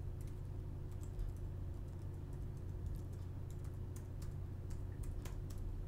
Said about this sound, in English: Can you hear me typing? Does that add to the authenticity of me looking this up right now? Well, I didn't hear you typing, but I trust that you're typing.